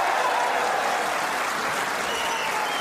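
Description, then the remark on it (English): Loud, sustained applause from a capacity crowd at the Crucible, going mad for Bradford's Joe Johnson as he defeats Steve Davis 18 frames to 12 in the snooker world final, a dense steady wash of clapping that stays even throughout, with no clear voices standing out. “The crowd here at the Crucible are going mad for Bradford's Joe Johnson.”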